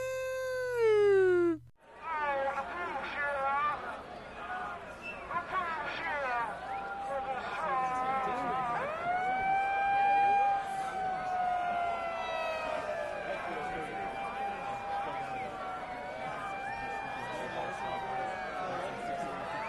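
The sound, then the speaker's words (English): A megaphone switched to its siren setting wails continuously, its pitch rising and falling in overlapping sweeps for nearly twenty seconds after a short steady tone and a brief pause, loud; a man plays it into a crowd. “he just turns the megaphone on to the siren. So it's like for like, I don't know, 2 minutes, you just hear, woo.”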